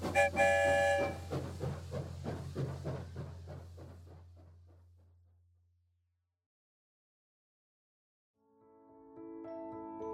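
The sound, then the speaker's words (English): A train chugs along the tracks toward the Pflugerville station in a steady rhythm, with a whistle blast at the start, fading away before a pause and some tonal music. “Down the tracks we go, back to the Pflugerville station.”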